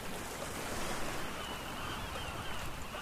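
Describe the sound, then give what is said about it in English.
Steady ocean surf rolls and washes continuously along a beach on a sunny day, a broad, even roar with no voices, fairly loud throughout. “It is so nice and sunny today at the beach.”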